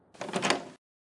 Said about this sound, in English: Well, come on, Rusty. Open the door.